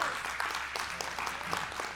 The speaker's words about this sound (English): Yes, give the Lord a hand clap of praise if you received anything out of that.